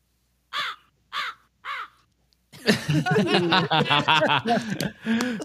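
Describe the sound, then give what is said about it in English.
A crow named Russell caws three times in a steady, evenly spaced rhythm, clear, followed by a longer stretch of loud, busy cackling and chuckling sounds. “Dale Griffith and what's the name Russell of your crow?”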